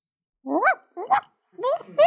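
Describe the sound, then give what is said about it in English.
A dog gives a few drawn-out, yelping barks in quick bursts with short pauses between them. The barks have an odd, whining rise and fall and sound somewhat distant. “It's only a dog.”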